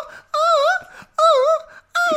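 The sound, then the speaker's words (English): A voice imitates the exhaust of two launching missiles with three loud, wavering, moan-like tones, each about half a second, the pitch wobbling up and down, separated by brief gaps of quiet breath and noise. “Oh, God, then he just super kicks a big red button and these two fucking missiles launch. Oh, that's outstanding. And all the missiles have painted on the heart, the tattoo that Sean has on his arm. Yeah, the exhaust sounds like...”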